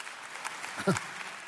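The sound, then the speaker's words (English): A church audience applauds its student ministry and kids ministry with steady, dense clapping at moderate volume, and a brief voice calls out partway through. “Yeah, you should clap.”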